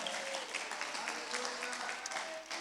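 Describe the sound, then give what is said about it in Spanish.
An audience at a bilingual Spanish-English church service claps steadily throughout, a dense crackle of many hands with scattered cheering voices and shouts mixed in. “Eso merece una alabanza, una aleluya, un aplauso, un grito.”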